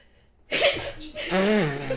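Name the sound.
sneeze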